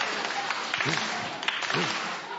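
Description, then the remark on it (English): Steady, dense applause from an audience clapping to cheer on a man standing on the line for his go, holding an even loudness throughout, with a couple of brief vocal whoops rising above the clapping. “Let's give him the clap.”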